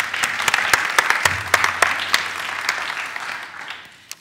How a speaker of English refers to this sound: Will you join me in giving him a big round of applause?